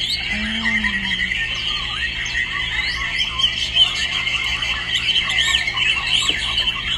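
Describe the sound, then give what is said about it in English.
A dense chorus of many small caged songbirds chirping and trilling continuously at an open-air songbird concert in Singapore, high-pitched and overlapping, with a steady murmur of outdoor background noise underneath. “While the birds chirp away, their owners sit in the shade, discussing the perfect technique of a true virtuoso.”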